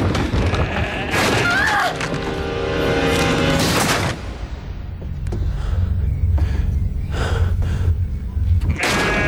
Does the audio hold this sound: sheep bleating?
yes